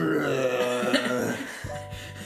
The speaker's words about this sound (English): And you can regulate. I keep saying regulate. You can change the extremity of the burps. Mm-hmm. Like, you know, you can be like a, or it can be like a.